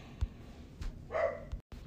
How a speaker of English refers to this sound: So now I have a dog barking in the background. I'm watching my daughter's dog, and he likes to bark at every single little thing that's out there. That's also my bigger dog, who normally doesn't bark.